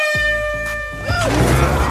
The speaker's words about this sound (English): Green arm coming in with sort of like one of those air horns, and wakes her up with the air horn to see if he can get her to turn, doesn't he?